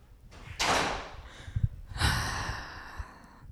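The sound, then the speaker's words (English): Heavy footsteps of a man walking away thud dully on the ground at an unhurried pace, a handful of low muffled impacts mixed with breathy rustling and whooshing noise. “He's walking away. If you can hear the thudding on the ground.”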